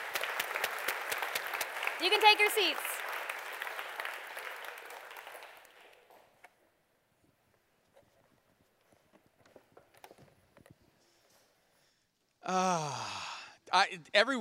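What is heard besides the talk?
round of applause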